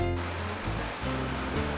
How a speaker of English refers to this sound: Wow, I'm hoping you can hear the rain. It's just so beautiful.